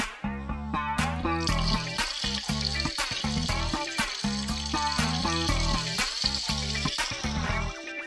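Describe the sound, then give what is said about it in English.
Running water hisses and crackles loudly and steadily, sounding like food sizzling in a hot pan, with low rumbling tones pulsing underneath throughout. “Damn, you frying chicken in there?”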